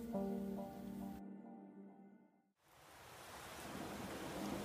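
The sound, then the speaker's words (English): A low sustained musical drone fades out, then a dense, steady hiss of heavy pouring rain swells in and fills the rest, loud, with no voices. “The rain pummeled mercilessly against the two sisters as they moved as one towards the chittering, growing call of the thing in the mountain as it made its descent.”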